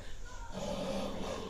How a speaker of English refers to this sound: Why does a dog sound like that? You could even pick different dog noises. Hyper violent.